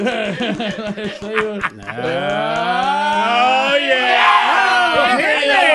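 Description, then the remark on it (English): A loud horse whinny and neigh sound effect, with wavering, sliding pitch that rises and falls over several seconds, then settles into a long, shaky call with no talking. “Henry the horse for Adrian.”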